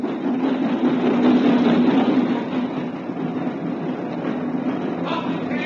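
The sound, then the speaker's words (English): A boat train pulls into a station, rumbling steadily: a broad mechanical roar with a faint tonal whine, easing slightly in loudness as it runs through the moment, with no voices. “At lunchtime, he was sipping an old and mild in the platform buffet when the boat train pulled into the station.”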